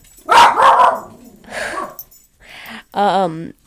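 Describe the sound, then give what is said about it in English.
A dog barks loudly in a few separate bursts, the first rough and extended, the last a drawn-out, wavering yowl with a whiny quality. “Oh, bye, dog.”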